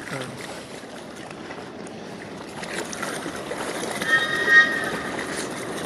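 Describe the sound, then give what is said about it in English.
River water laps and washes steadily against the bank at the speaker's feet, a soft continuous splashing that swells slightly near the end, with a faint high tone briefly rising above it and no one talking. “You might be able to hear the river lapping at my feet.”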